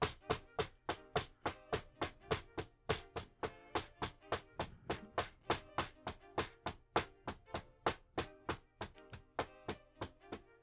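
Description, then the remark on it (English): Steady, rapid knocking on the closed wooden door of a room on an upper floor, dozens of firm raps in an even rhythm that continues without pause, fairly loud, with no voices. “When your arm starts to get tired is when the door finally opens.”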